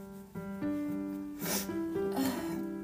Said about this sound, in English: I keep like sniffing. Oh my God.